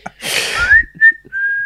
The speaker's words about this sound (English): I feel like we need like a, should be like a little jingle. Like a tune. Yeah. Shall I go? Go. I can't, I'm going to laugh now. I was going to whistle.